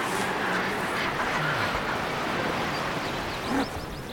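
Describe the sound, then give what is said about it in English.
A dense, constant chorus of seabird calls from a crowded cliff colony of nesting guillemots, razorbills, fulmars and puffins, harsh croaks and squawks overlapping with no pause, with a few sharper calls rising above a steady noisy background. No voices. “A load of puffins down at bustling sea city, seabird city.”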